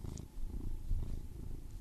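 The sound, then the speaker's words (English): A cat purrs at a microphone, playing with its pop filter, a steady low rumbling drone that pulses in a gentle rhythm for a couple of seconds, with no voices. “My cat is attacking the microphone. I heard him purr.”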